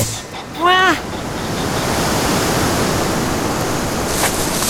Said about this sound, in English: I couldn't hear it for the wind.